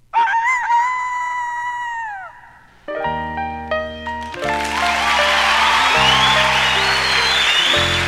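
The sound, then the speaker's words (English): A single loud rooster crow rings out alone for about two seconds, its cock-a-doodle-doo rising then sliding down, before bouncy instrumental music kicks in and fills the rest. “Says good morning with a cock-a-doodle-doo.”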